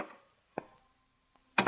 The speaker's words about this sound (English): The scene is Dr. Christian's reception room, where Judy Price is going about her morning tests. The door opens, and a young man enters.